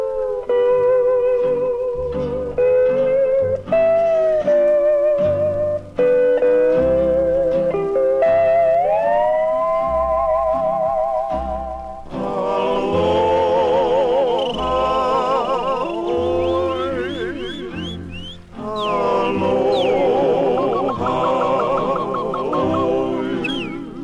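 A loud, busy novelty band plays a bouncy tune packed with comic sound effects: croaking noises, whooping siren-like slides and squeaky honks over brassy, rhythmic accompaniment, with no talking.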